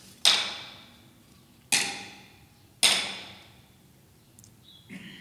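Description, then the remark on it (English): Three sharp, loud hammer blows strike metal spikes at uneven intervals, nailing hands and feet to a cross, each clang ringing bright and fading slowly, followed by a faint clink at the end. “The sounds of the hammer striking the spikes echoed through the crowd.”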